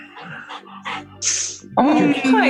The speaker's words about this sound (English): My dog's crying at my door. She's so scared.